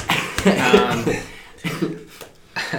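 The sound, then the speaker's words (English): A few harsh, throaty coughs come in bursts, mixed with rough vocal sounds and brief pauses between them. “cough it out. Cough it out.”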